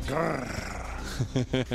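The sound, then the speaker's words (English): A man imitates a growl: a drawn-out, rough rumbling snarl, then a few short, choppy growling bursts near the end. “And I kind of wish you were getting this one first because go ahead and get your growl ready.”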